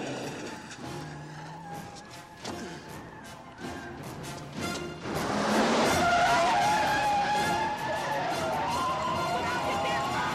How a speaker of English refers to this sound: Oh, fuck. That's a pretty good stunt. Great. Great. Fucking car flips over. Awesome.